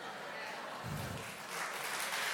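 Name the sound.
women in audience clapping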